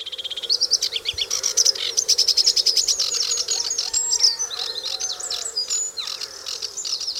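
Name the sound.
sedge warbler song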